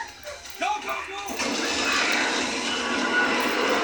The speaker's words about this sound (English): Did that motherfucker just do the Wilhelm scream?